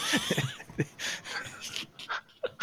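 Heavy, labored breathing: a rapid series of ragged, wheezy breaths and pants, close and fairly prominent, with no talking over it.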